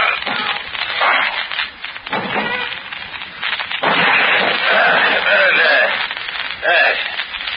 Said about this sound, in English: Let's break in the door. All right. Here we go.